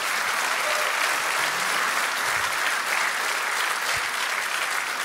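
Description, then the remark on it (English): An audience at Calvary church claps for the people being recognized, a dense, even wash of many hands with no pauses or swells, holding at the same level for several seconds with no voices standing out. “So real quick, Ven, yeah, you can clap for them. That's great.”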